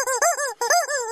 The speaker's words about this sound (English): Chicken, stop it. Sorry, I almost had to wring its neck.